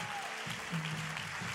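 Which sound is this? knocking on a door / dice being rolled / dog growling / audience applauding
audience applauding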